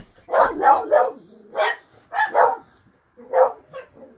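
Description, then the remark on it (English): Dogs bark in short, irregular bursts, a quick cluster of three followed by a pair and then a couple more after a pause, fairly loud with no one talking. “I'm not sure what just set my dogs off.”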